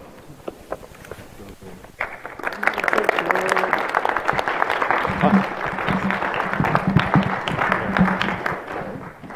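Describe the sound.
Audience applause swells in after a couple of seconds of quiet, a dense steady wash of many hands clapping that stays loud and even to the end, with faint voices mixed in.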